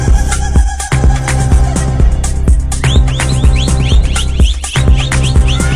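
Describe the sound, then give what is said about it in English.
Sharp, sliding whistle blasts repeat in quick succession over a loud, pounding South African gqom electronic dance beat with heavy bass drums, the whistles starting partway through and continuing to the end. “Them South Africans and their whistles.”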